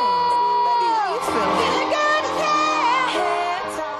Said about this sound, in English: Please give a round of applause to my guest today,